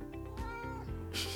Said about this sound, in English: Kitty cat has walked in now. Do you want to say hello? Meow.